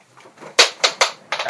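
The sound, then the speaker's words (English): A die clatters and bounces on a floor, giving four sharp clicks that come quicker together before a final rattle, with no voices present. “That's the sound of a dice hitting the floor.”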